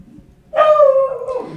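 A hound dog named Bell lets out one loud, drawn-out baying howl after a moment of quiet, its tone sliding gradually lower over about a second.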